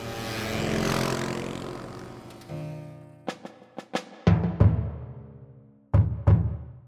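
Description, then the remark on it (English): Motorcycle engines rumble from a distance at midnight, a low droning swell that fades, followed by several sharp revving bursts and pops echoing out. No one speaks. “You hear the rumbling sounds of motorcycles in the distance.”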